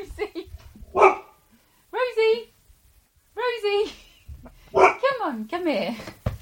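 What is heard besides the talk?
dog barking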